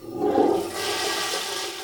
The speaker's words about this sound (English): Is someone in the toilet? Mr. Whiskers. Your cat uses a toilet and flushes when he's done? Of course. Only savages don't flush.